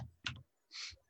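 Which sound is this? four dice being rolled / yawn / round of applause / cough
four dice being rolled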